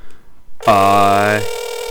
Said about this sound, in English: Phone's ringing.